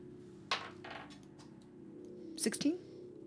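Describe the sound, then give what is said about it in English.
Small dice, rolled by a player during a tabletop game after blowing on them, clatter across a hard tabletop in a few quick, sharp rattling bursts over a low steady background hum with a brief vocal sound near the end. “Are you blowing on your dice before you roll it?”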